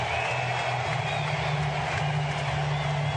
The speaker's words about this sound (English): And now Felix takes his cap off. Big roar. Listen to this crowd.